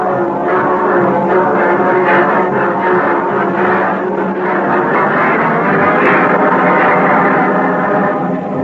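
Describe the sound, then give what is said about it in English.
A massive Walford train rolls in with a loud, steady rumbling roar and a droning, whining hum that holds unbroken for several seconds, with no voices. “The train rolls in.”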